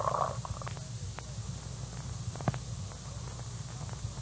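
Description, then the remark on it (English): A sample being assayed dissolves in nitric acid poured into a testing jar, proving to be fool's gold: a steady low bubbling churn with scattered soft pops and crackles, holding an even level throughout with no voices. “Well, you can all see for yourselves, the stuff is going to pieces, disintegrating completely and entirely.”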